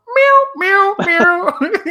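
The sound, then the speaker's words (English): A voice mimics a cat from a film that meows while playing the piano, with a string of drawn-out, tonal meows, loud, the calls running together over about two seconds with rising and falling pitch. “Just like, and then like the cat's like playing the piano and he goes like, meow.”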